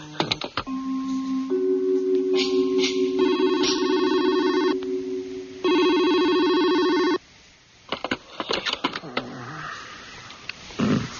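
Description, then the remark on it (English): A telephone rings with a loud electronic warble that builds in layered tones for several seconds, then cuts off, followed by scattered clicks and handling rustles. “Don't answer your phone, okay? Don't even let your answering machine answer your phone.”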